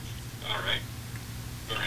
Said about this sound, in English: I hear her radio. Yeah, I can hear something, but yeah.